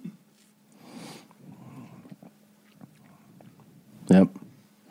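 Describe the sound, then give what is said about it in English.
Wet gulping and swallowing as someone downs a big mouthful of water, over a low steady hum, followed by a short spoken word near the end. “Oh, look, biggest sip of your life just went down.”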